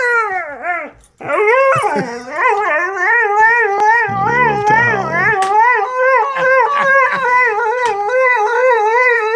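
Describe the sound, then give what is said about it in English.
A husky dog, Dexter, howls loudly on the command "sing", a long wavering, singing howl that rises and falls in pitch with yips and whimpery breaks, carrying on almost continuously for several seconds. “the husky in him, we eventually figured out how to tap into it to the point where all we had to do is say sing.”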